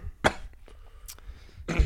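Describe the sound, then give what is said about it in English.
Two harsh, forced coughs, a staged imitation of a Corona cough rather than a real fit: one sharp burst near the start and a longer, rougher one at the end, with quiet rustling between and no talking. “No, that was just an example of what a Corona cough would sound like if I had it.”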